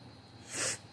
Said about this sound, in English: I can take a little break real quick. Blow my nose.